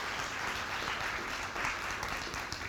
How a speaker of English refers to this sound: Why don't we give them a round of applause this morning, all right? Thank you, guys.